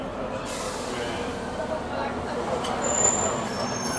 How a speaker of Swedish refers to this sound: Kom det en till buss här också. Är det där en flygbuss, eller vad sa du? Nej, en buss.